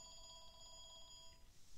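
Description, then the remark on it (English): A telephone rings with a steady, high electronic trill that warbles quickly, then cuts off near the end. It sounds faint, with no one talking over it. “Okay, and the phone rings.”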